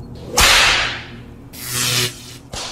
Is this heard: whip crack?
yes